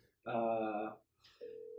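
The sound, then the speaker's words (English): An outgoing Skype call ringing tone: a loud, buzzy electronic tone lasts under a second, then after a brief pause a steadier, purer tone starts and continues to the end. No one speaks. “Skype home. All right, so we'll call him Beneil Dariush.”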